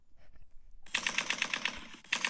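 A rapid, evenly spaced rattle of machine gun fire, a sound effect, starts after a quiet moment, runs for about a second, breaks off briefly, then resumes in another fairly loud burst.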